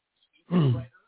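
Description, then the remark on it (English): One short, gruff throat clearing from a show host, a rough low-pitched rasp lasting about half a second, heard on its own with no talking around it. “Excuse me, got a little frog in my throat this evening.”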